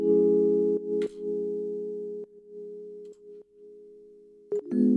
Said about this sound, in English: So the only other thing I added to the Rhodes was within the app itself, and I just added a little bit of reverb.